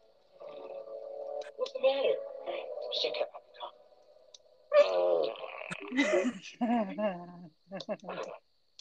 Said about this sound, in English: He's just farting like all around the little cave. He's walking along. Walking farts.